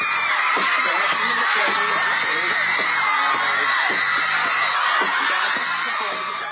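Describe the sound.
A large crowd of teenagers in Times Square at MTV's TRL studio screams and shrieks continuously for favorite pop stars, loud, with overlapping high-pitched cries and whoops forming a dense wall of excited noise throughout.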